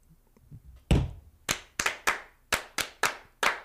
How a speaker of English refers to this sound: Almost forgot how to do that. Like riding a bike. I guess. The claps got me there.